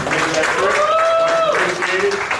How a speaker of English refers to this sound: So let's give a hand clap for them.